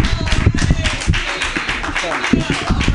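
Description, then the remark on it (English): An audience bursts into steady applause, a dense, continuous patter of many hands clapping for the full few seconds, with faint crowd voices mixed underneath. “Big round of applause.”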